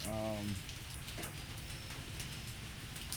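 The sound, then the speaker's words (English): Steady rain patters on a hard surface outdoors, a dense, continuous spray of small drops, with a brief voice sounding at the very start. “Yeah, don't mind the raindrops, man. We outside with it. It's raining.”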